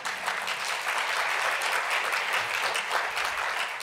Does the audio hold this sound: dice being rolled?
no